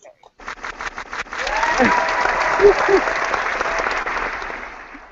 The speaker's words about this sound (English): That deserves some claps.